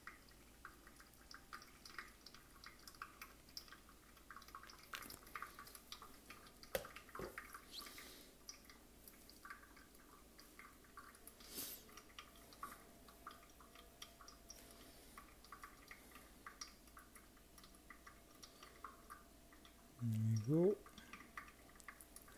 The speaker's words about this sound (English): And then we pour the rest, and then I just open the valve until it stopped dripping.